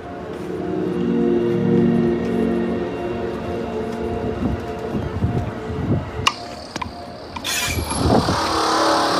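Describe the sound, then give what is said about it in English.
A city bus's engine rumbles and revs as it pulls away from a stop, with brief sharp hissing bursts near the end over steady street noise. “And since it was early, it took off as I was rolling up to it.”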